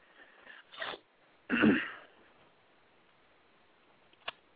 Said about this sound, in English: Okay, I thought you fell asleep. I thought I heard some snoring.